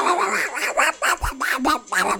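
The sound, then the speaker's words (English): An Australian musk duck during a mating ritual utters a string of harsh, nasal, speech-like syllables in quick succession, fairly loud, imitating human swearing, shouting "You bloody fool!", with no other sounds around it. “If it walks like a duck and swears like a trooper, then it's probably an Australian musk duck.”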